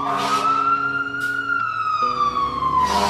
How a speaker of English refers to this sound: That sound means it's either time to pull over and let the fire truck go by, or it's a sigh of relief because they've just showed up to your house.